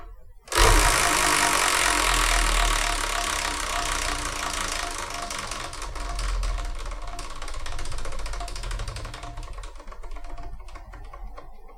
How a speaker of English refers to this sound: we're going to just spin the wheel, whatever number it lands on